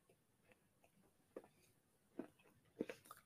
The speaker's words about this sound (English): I'd be funny, guys, but I'm chewing Gaviscon because I'm 30 and my guts are terrible.